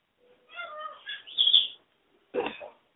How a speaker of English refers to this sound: Come on, Pony Bird. I gotta get off my knee. I can't get up. I'm pinned by a bird. Send help. I'm being held down by a 1-pound chicken.